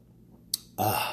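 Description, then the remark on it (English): A quick sip of hot coffee: a short wet slurp, a brief pause, then a breathy, voiced exhale right after swallowing. “Had to take a sip of coffee right quick before I go into it.”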